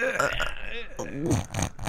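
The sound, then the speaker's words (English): A voice imitates snoring: rough, throaty, gurgling snorts come in several uneven bursts, voiced and fairly loud, with a strained, choked quality between them. “How is he still snoring?”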